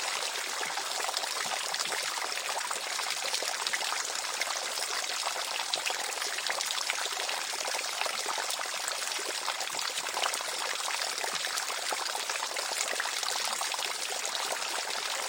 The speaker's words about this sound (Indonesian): air terjun pun terpisah, membuka jalan rahasia gua.